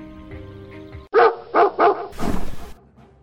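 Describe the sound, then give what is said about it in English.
A dog barks sharply three times in quick succession, followed by a burst of rough growling and snarling, over a low droning background. “Leave my dog alone.”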